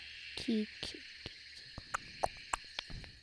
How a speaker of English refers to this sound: Yeah, it kind of sounded like a ribbit though. But yeah, lots of different frogs make lots of different sounds.